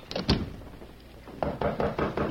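Knocking on a door: a couple of sharp raps, a brief pause, then a quick, evenly spaced series of four or five firm knocks, fairly loud with no voices.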